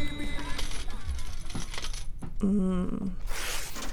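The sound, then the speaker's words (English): Metallic coins clink and jingle in a busy cluster of bright, ringing taps, with a brief pitched tone and some voices mixed in around them. “I just love the sound of money. Clinging.”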